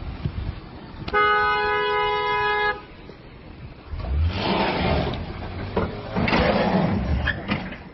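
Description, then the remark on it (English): The horn of a Jeep being repossessed in Florida blares in one loud, sustained honk lasting about a second and a half, followed by rumbling, clattering mechanical noise. “Yeah, I don't know what you're blowing the horn now.”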